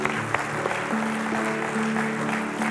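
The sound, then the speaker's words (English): An audience claps and applauds continuously in praise of the Lord, a dense, steady wash of many hands at an even loudness throughout, with a low sustained tone humming faintly underneath. “Come on, let's keep clapping.”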